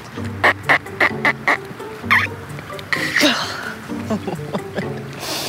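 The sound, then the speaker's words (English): A woman at the edge of a lake on a cold, windy day mimics a duck to call 36 ducks, letting out a quick run of five loud, evenly spaced nasal quacks, then a few more scattered quacking calls and vocal sounds follow over faint outdoor noise. “which is a brave woman on the edge of a lake quacking her guts out and 36 ducks ignoring her on a cold, windy day.”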